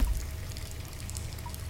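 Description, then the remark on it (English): Steady running water pours continuously, a broad hissing wash with a low rumble underneath and no pauses. No one speaks. “I could turn off the water or something.”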